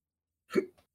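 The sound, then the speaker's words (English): A single sharp hiccup, fairly loud, with a short catch of breath just after. No talking, just silence around it. “Look, the hiccups.”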